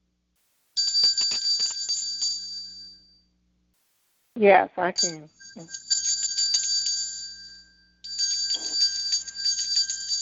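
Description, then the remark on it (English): A church bell rings in long, bright, continuous bursts, three stretches of steady ringing separated by short pauses, with a brief spoken phrase in one gap, rung in commemoration of the first slaves brought to America. “That's our bell ringing.”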